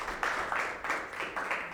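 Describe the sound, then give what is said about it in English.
An audience gives a man a round of applause in a steady wash of clapping, with soft swells every few tenths of a second, moderately quiet, with no one speaking over it. “Why don't you guys give him a round of applause there?”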